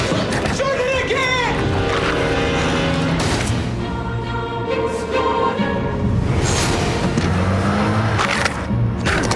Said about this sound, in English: What's that noise? Somebody's shearing.